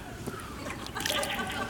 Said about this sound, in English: You can tell it's winter. There's no more water in the air. I hate preachers who drink in front of everybody.